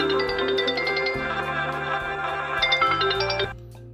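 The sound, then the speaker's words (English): A phone ringtone from an incoming call on a Sunday evening plays a bright, repeating electronic melody of quick high notes over a steady lower tone, fairly loud throughout, then cuts off abruptly near the end. “So now you've heard my phone ring over the”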